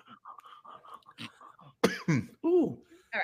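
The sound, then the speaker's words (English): Soft murmured talking gives way to a burst of loud coughing and throat clearing, three or four rough hacks in quick succession, followed by a final short harsh sound. “Hey, you got a cough to get off.”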